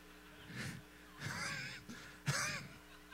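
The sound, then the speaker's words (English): A voice imitates a duck call with three raspy, nasal quacking bursts, the middle one longest and the last one sharpest, with short pauses between and no talking. “He's like, well, this is a duck call.”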